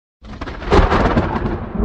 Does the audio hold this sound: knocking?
no